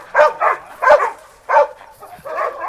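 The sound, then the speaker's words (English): Dogs in a backyard bark in short, repeated bursts, about five sharp woofs spread over a few seconds, with no one speaking. “So we got backyard doggies.”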